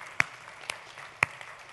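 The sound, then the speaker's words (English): A few scattered, faint handclaps from an audience, spaced roughly half a second apart, sparse rather than a full burst of applause. “And yes, can you give you guys a round of applause?”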